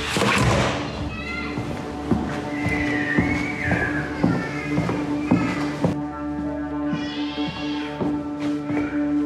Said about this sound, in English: Is there a point? Knock on the door?